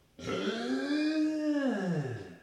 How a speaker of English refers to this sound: And by the way, we are in person in the garage, so we're doing the 6 feet of separation here. And that's why I turned my head away from the mic this time to burp.